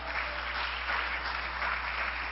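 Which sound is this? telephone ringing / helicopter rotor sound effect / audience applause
audience applause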